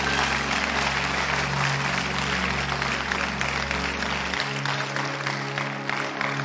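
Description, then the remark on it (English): A crowd claps steadily in a dense, continuous wash of applause over a low droning hum, which drops away near the end while the clapping carries on at even loudness. “Clap your hands.”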